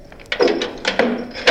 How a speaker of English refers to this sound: Hey, we're locked out. Shake-a-leg and open the door already. Hold your horses.